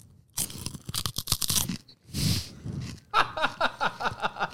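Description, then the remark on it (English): Loud crunching of a crisp snack, Beaver Nuggets from a Bucky's gas station, being chewed, with a burst of rapid bites, a brief rustle, then a steady rhythmic run of crunchy chews right at the mic. “Chewing ASMR, dude.”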